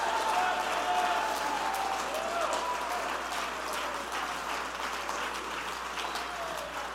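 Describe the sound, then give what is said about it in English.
A crowd claps steadily and loudly for several seconds, with scattered shouts and cheers rising over the dense applause, which keeps going without a break. “Clap your hands and shout with a voice of triumph.”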